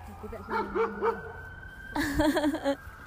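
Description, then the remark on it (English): A big dog barks in a park: three short, rising yelps in quick succession, a brief pause, then a louder, rougher burst of barking before it stops. “Hi, big doggy.”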